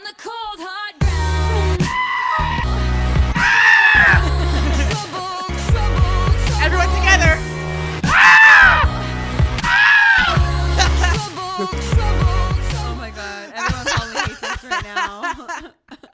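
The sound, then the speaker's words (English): Several voices let out loud, wavering goat-like screams in imitation, in a few sharp bursts over a pop song with a strong steady beat, with snickering laughter scattered throughout. “This is the goat part.”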